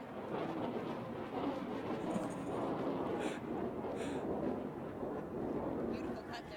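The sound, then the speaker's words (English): A low-flying military plane roars overhead above a court where people are playing, its loud, dense rumble holding steady and filling the whole stretch without fading. “Why are there so many military planes flying around here?”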